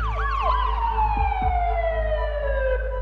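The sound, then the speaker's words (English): A loud police siren wails, quick warbling yelps at first, then a long tone sliding steadily downward in pitch, over a constant low engine rumble. “Kirsten's parents come home to police lights and sirens.”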